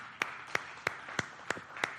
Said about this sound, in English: So congratulations. Let's applaud these guys.